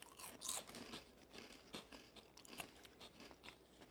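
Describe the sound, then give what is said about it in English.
Crisp crunching as someone bites into and chews a sour, crunchy corn snack that looks like a Flamin' Hot Cheeto, with repeated irregular crackly bursts over about four seconds and no talking. “It looks like a Flamin' Hot Cheeto mixed with a Flintstones vitamin. Just smells like a corn snack, basically.”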